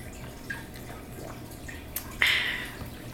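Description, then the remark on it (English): A quiet sip and gulp of water, taken on a count of three, with a brief wet slurp after a couple of small mouth clicks; no talking. “We're going to take our nice little chug of water on three.”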